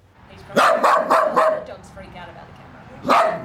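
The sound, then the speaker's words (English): A 5-year-old dog named Choco barks four times in quick succession, loud, then pauses briefly before letting out one more bark. “One day, 5-year-old Choco was an excitable, vibrant dog.”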